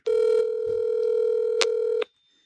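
A phone call placed with no caller ID ringing out on the line: one steady, electronic ring tone lasting about two seconds, fairly loud, then cutting to near silence. No one speaks.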